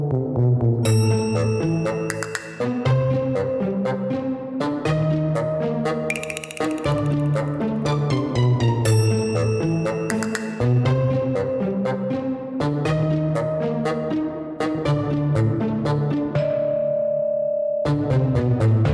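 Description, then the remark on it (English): Bright instrumental intro music with chiming, bell-like tones and a steady melodic line plays loudly and continuously for about nineteen seconds, settling on a held note near the end, with no talking. “Let's do some intro music.”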